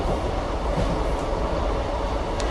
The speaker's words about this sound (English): And I'm on the last train now.